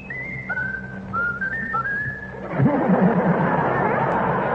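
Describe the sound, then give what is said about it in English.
Raffles whistles the tune My Country 'Tis of Thee on command: a short series of clear, high whistled notes rising and stepping like a familiar melody, then a lower warbling trill over a noisy background near the end. “Now whistle my country tis of thee, Raffles.”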